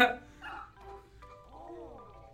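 A retro video game dog sound effect, the reset dog from Mario Paint: a couple of short, bright electronic barks followed by a rising and falling whiny yelp, fairly clear, with nothing else playing.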